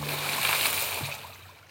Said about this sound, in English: Instead, he took his axe from the satchel, dangled the hatchet at the water's edge, and let it fall into the river with a plop.